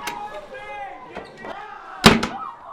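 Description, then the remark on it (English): A hidden door at the far end of a room, leading to a back hall, swings and shuts with a sharp slam followed by a quick second knock, after a stretch of voices talking in the room. “Come on, Gerda, through this door.”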